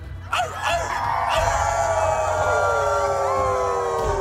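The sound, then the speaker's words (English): A crowd howls together, many voices rising into long, sustained wails that slowly slide downward in pitch, loud and continuous over a low rumble for several seconds. “Take all that frustration inside you, ball it up in a tight little ball, and let it out in a howl.”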